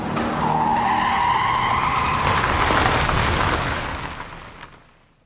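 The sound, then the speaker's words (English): A car skids to a stop, its tires letting out a loud, sustained screech over rough road noise for several seconds before the sound trails off into quiet. “And just as our Sasquatch is pulled out of the driver's seat, Penny jumps in through the same window, lands in the driver's seat, and telekinetically stops the car.”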